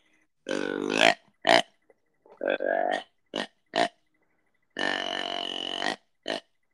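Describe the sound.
A person imitates the grunt of a four-year-old deer with a series of deep, burp-like vocal grunts, some long and drawn out, others short and clipped, delivered loudly with brief pauses between.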